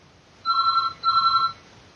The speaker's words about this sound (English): I don't even know if you can hear the phone call ringing.